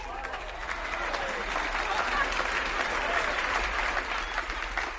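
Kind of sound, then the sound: crowd, audience applause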